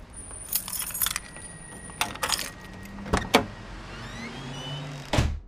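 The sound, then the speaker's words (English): Metal studio keys jangle and clink in several bright bursts, rattling as they are dug out, with a couple of sharper clacks and a final thud near the end; no talking. “Hey, have you got the keys, mate? Let's get in the studio. Yeah, hang on. Here we go, mate. I'm just digging them out.”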